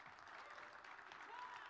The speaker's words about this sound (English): Yeah, we can give him a round of applause.